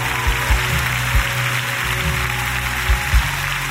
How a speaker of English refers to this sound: Come on, clap your hands if you know that's all God wants.